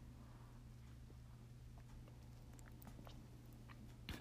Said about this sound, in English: excuse me, let me take a little bit of tea, because I guess we're about to get a little more spicy. So let me just sip.